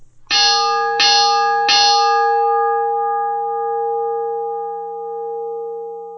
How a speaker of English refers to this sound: So in news this week, we have lost one of the greatest champions of all time. Yes. We are going to take a quick couple seconds and you know, have a three bell salute to Harley Race.